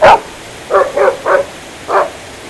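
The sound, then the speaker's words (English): A dog barks five times, one sharp bark followed after a pause by three quick barks in a row and then a single bark, with no one talking. “You know how Lassie barked for a purpose? He barks for nothing.”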